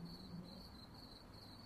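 Crickets chirp steadily in a high, pulsing trill against a low ambient hum, a quiet, continuous nighttime chorus outside in the darkness, with no voices.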